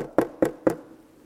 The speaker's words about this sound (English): She knocked on the door